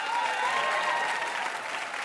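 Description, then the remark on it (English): A game show audience claps for two contestants in a steady, dense round of applause, a bright crackling wash of many hands that holds level for about two seconds with no voices over it. “Huge round of applause for these two contestants.”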